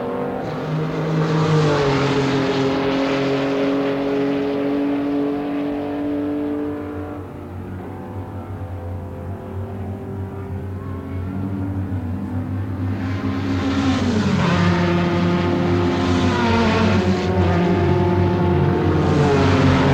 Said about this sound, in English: These are cars on the track.